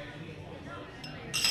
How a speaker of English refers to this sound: All right, guys, well, it looks like we are all done with our beers. I say that we cheers our empty glasses.